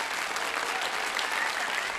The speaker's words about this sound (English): That is good, and I need my applause.